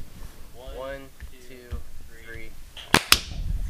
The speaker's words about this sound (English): Let me, so we're recording, but let's do a clap just real fast. Sorry to, sorry to interrupt. No, no. All right. We'll do 1, 2, 3 clap.